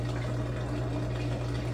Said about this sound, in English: The little washing machine interlude here while we reset.